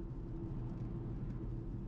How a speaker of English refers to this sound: I got a little bit of road noise. It has got that, you can add the sound effects in.